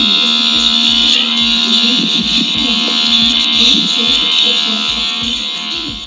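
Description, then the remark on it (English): An electric trimmer used to shave pubic hair buzzes loudly and steadily for several seconds, a continuous whine with a slight wavering in pitch, with faint low thumps and sounds underneath. “Excuse me while I use a turf chopper.”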